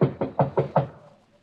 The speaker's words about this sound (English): Better knock harder.